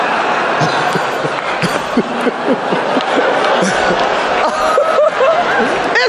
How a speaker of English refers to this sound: Oh, wow. Will Smith just smacked the shit out of me.